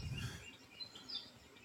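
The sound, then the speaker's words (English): Birds chirping faintly, a few short high tweets scattered over a soft background hush, with a brief low rumble at the start and no voices. “It's birds.”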